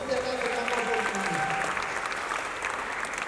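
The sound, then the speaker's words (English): An audience breaks into steady applause, a dense, even patter of many hands clapping at a constant level for several seconds, with faint tonal voices or music threading through underneath. “Can you clap for these two?”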